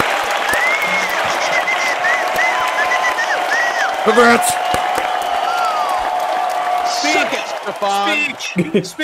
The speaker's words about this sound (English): Congratulations, everyone. Let's all give her a round of applause.